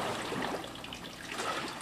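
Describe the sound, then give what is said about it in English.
Water sloshing and churning as a hydraulic wave maker pushes a bulkhead back and forth to send waves through a large tank simulating ocean waves at the U.S. Naval Academy in Annapolis, a steady rushing wash with gentle surges, continuous, with no voices. “This thing, all it does is push it back, push the bulkhead back and forth, and it generates waves, as you'll see.”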